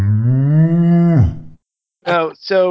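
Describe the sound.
A couple of people imitate cows mooing: one long, low, drawn-out moo that drops in pitch at the end, then a short pause and two quicker, higher moos in close succession.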